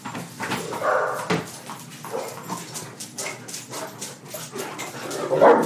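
Two large dogs, each over 200 pounds, bark and whimper indoors, with repeated short, rough bursts and a few higher whines in between, moderately loud and without any talking.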